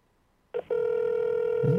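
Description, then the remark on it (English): An outgoing phone call to a woman ringing: after a short blip, a steady mid-pitched ringback tone starts and holds unbroken to the end, with a faint low murmur appearing near the close. “You're calling her.”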